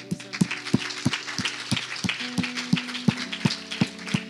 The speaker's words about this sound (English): Awesome. Hey, can we just give these people a clap?